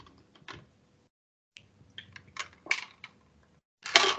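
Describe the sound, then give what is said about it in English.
Someone takes a sip of water: a few soft clicks and knocks from handling a cup or bottle, then short, breathy slurps and swallows, with quiet gaps between and no talking. “Before I jump on the next one, I got to take a sip of water.”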